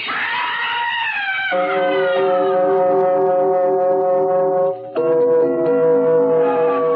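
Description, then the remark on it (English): A loud ambulance siren wails, sliding in pitch before settling into a steady, blaring tone that breaks briefly and resumes, with no voices. “You ambulance boys made good time.”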